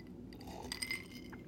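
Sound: glass clinking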